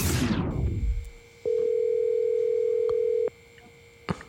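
signal or alarm, telephone dial tone

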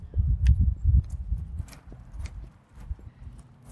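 human body sound, footsteps walking outdoors

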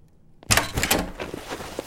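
household object, front door being opened

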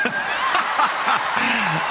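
crowd, crowd cheering and applauding

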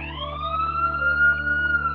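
vehicle, ambulance siren

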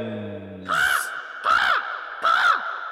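bird, bird cawing

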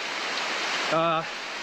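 nature, heavy pouring rain

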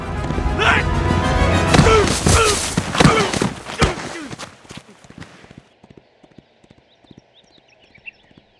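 animal, horse

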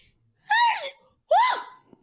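human body sound, sneeze

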